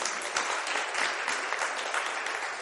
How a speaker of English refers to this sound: Can we give the kids a round of applause?